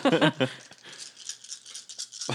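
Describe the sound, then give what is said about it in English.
About 300 dice are rolled for a charisma and persuasion check in a tabletop role-playing game. They make a dense, bright clatter, rolling and rattling together for about two seconds, framed by short bursts of a person talking at the start and end. “Is that 300 dice? It is 300 dice”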